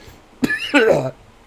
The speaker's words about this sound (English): Anyways, talk for a second while I cough.